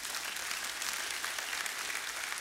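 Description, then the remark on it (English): An audience claps steadily, a dense wash of many hands forming a continuous, even patter that holds at a fairly consistent loudness from start to finish, with no voices rising above it. “And the best way, go ahead and clap if you want.”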